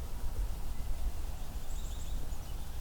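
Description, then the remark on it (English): A soft pine warbler trill, a quick run of high even notes rising faintly above a steady low background rumble for about a second near the end. “A lot more subtle trill, softer. Fades in and out. Also comes from a pine tree often.”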